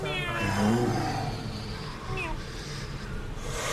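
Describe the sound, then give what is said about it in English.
A person makes a cute, high-pitched cat meow with their voice, a drawn-out wavering mew followed by a couple of shorter squeaky ones, fairly clear. “I'm just going to look at him like it was an accident. Super cutesy cat.”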